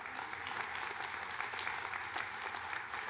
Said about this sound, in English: And you just clap for us, the pastors and staff, but what I want you to hear is us clapping for you because of you, because of the pastors and the staff.